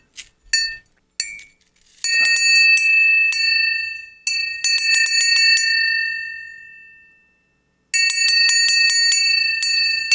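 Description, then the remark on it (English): A small metal bell that has been through an atomic blast rings in repeated bursts, bright clanging strikes with long shimmering overtones that fade out, then a final flurry of ringing; fairly loud, no talking. “This was, I've tried to get that bell for 15 years.”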